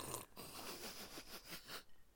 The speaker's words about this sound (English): But I guess the question is, whilst you're sipping your Baileys and sipping it so close to the mic, all I can hear is the ice rattling.